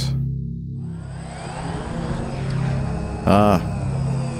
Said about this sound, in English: That's our drone sound effect there. Autonomous drone.